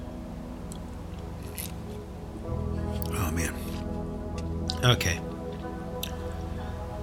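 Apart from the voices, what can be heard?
sipping coffee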